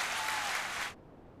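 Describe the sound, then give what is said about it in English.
A short burst of crowd applause played as a sound effect, dense and steady for under a second, then cutting off abruptly into quiet. “Can I find my clapping?”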